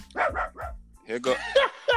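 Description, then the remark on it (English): A little pocket dog named Trigger barks in a quick run of three sharp yaps, then keeps barking more excitedly, fairly loud, with people's voices mixed in around it. “The dog said, the nigga Trigger said, I'm on this motherfucker too.”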